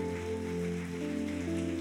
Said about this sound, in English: Miracles are being released. Apláudelo, apláudelo, apláudelo. Come on. Applaud for the Lord.